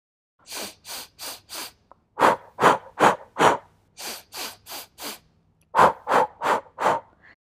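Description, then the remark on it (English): Rhythmic breathing exercise in sets of four: quick sharp sniffs in through the nose, then four forceful puffs out through the mouth, repeated with brief pauses between sets. “Take 4 quick breaths of air in through your nose and repeat the 4 bursts out of your mouth like this.”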